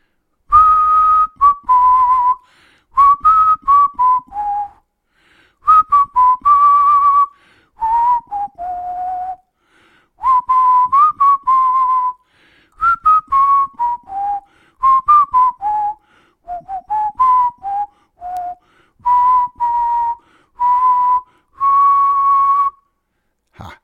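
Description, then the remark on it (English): A person whistles a slow, wandering melody alone, with clear sustained notes and short pauses between phrases, fairly loud: the whistled intro of a rock ballad from around 1986 or 1987. “That iconic whistle intro from … in, I think, 1986 or 87. That, of course, is the intro to the song …”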